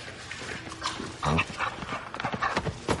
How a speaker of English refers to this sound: Is that the dog? He likes you.